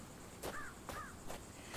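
A crow being fed by a person caws twice in quick succession, harsh nasal calls repeated about half a second apart, with a faint airy background hiss and no talking.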